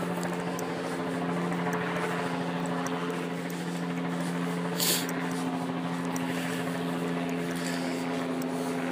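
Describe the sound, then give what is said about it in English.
A helicopter rotor drones steadily overhead, a loud, continuous mechanical hum with a low whirring tone and a brief airy swell midway, with no voices. “I want the helicopter to be looking for an alien”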